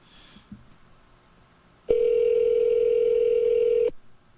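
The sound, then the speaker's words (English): A phone line's ringback tone during an outgoing call to a cell phone: one steady, loud two-second buzz after a moment of quiet background noise, then it cuts off. No one speaks. “I should call Diana and ask her about this.”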